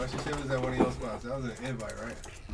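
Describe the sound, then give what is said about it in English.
A pigeon coos repeatedly in the background, soft rolling calls layered under people talking. “Bird wanna be on the show, bad.”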